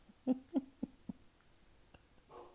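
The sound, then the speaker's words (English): A dog gives four quick, short barks in a row, the first two loudest and the rest fading, then a soft rustling noise follows in otherwise quiet surroundings. “Look, he just tell me that dog didn't just bark.”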